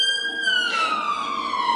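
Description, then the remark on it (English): A police car siren wails loudly and steadily, its bright tone sliding slowly downward in pitch over a couple of seconds, with no voices present. “There go the police to get him.”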